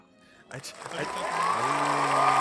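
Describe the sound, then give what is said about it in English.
A burst of crowd applause starts abruptly and swells into a steady, loud wash of clapping, with cheering voices mixed in that carry on to the end. “Are you clapping with no hands?”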